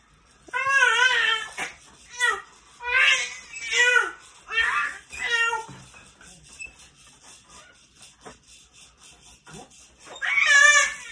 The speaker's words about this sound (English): So you may be startled, and it may sound like that the child is struggling in some way, shape, or form, but she is not. She's just, I put her in her jumper to try to burn out some energy, and she just starts jumping and screaming.